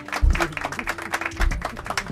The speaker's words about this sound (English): Wait, and now I'm clapping. Damn, that's G1. Even worse. Really? I'm not in control of the soundboard.